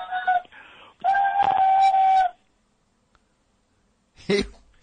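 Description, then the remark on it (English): A voice imitates a cartoon steam whistle: two steady, shrill whistle blasts with strong harmonics, the second longer and louder, followed by a pause and a brief burst of vocal noise. “And he even made the steam whistle sound.”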